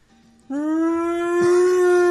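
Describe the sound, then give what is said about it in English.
A voice imitates a brachiosaurus dinosaur call: a single loud, sustained howl-like tone that slowly rises and holds steady without a break, heard alone with no talking. “And we're gonna go, I guess, for the fucking dinosaur call, huh? Give me your brachiosaurus.”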